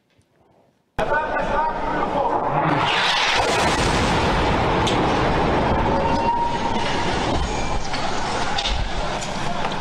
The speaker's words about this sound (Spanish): Lo que ustedes vieron ahí, las imágenes durísimas que acaban de ver, es la explosión de un hospital en Gaza. No se desconoce aún a los autores de este suceso que dejó al menos 500 fallecidos.